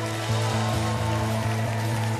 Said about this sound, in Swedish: Till andra kvällen på Europakonferens. Ja, låt oss få höra ett jubel i lokalen.